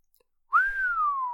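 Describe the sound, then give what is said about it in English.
A single long, low whistle by a man that swells quickly, then glides slowly downward in pitch for nearly a second, clear with no talking around it. “Then he whistled long and low.”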